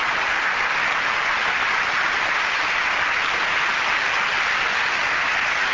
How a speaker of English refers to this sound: If you give a round of applause for Helen Laban, who worked so hard on this, it really would really deserve your appreciation.